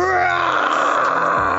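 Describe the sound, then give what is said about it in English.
A person lets out a loud, sustained roar imitating Goliath from the mid-90s Disney cartoon Gargoyles while watching it, a rough, strained growl held steadily for over a second with no other sounds around it. “And do you always yell along with Goliath?”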